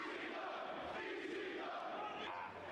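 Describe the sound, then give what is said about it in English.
An ECW wrestling crowd roars and cheers steadily after Sandman bulldogs Mikey onto a ladder off the top rope, a dense wall of shouting voices that stays loud throughout with no pauses, no single voice standing out. “Crowd's loving it.”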